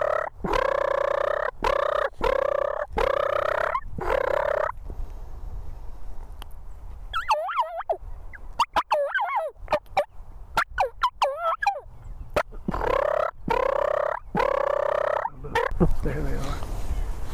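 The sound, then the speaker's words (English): Wild turkeys gobble in loud, rapid bursts, a rattling series at the start and again near the end, with higher warbling calls in between. No one speaks. “There's turkey gobbling over here. A turkey gobbling.”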